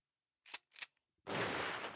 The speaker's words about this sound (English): Quiet gunshot for y'all.